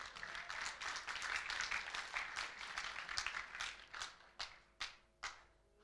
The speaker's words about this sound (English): But let's just give yourselves a round of applause, everybody.